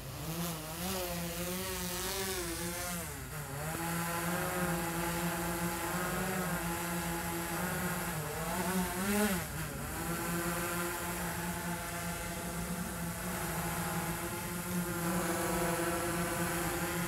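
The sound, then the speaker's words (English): A steady, high-pitched whine of drone propellers spinning as the drone is started before being taken up to 390 feet, with layered buzzing tones that waver and bend in pitch as the motors adjust, continuous throughout with no voices. “Props are spinning.”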